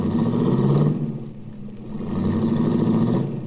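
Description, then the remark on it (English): A baby blue, right-hand-drive foreign convertible's engine revs and pulls away, its low rumble swelling twice as it accelerates into traffic. The sound is fairly loud, with no voices. “I watched Cookie's baby blue convertible cut out into the traffic.”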